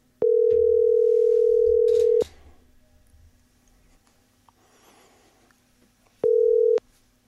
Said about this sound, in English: So, yeah, in fact, I'm going to call him right now. Let me buzz him up and see if we can get this going.